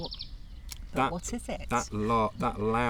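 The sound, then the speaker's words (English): A wren's loud, rapid, high trill rings out briefly at the start before a person begins speaking over the fading background. “That loud call, that's a wren.”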